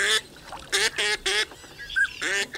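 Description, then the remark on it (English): Waterfowl calling, snow geese and northern pintail ducks at a spring migration stopover on the Central Flyway, with loud, harsh honking calls in an uneven series of about five bursts, some clustered together, with a fainter high note between them. “In recent years, the number of snow geese stopping in the region during spring has risen dramatically to more than 3 million birds.”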